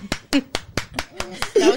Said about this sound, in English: That was so good. The clap was fucking great.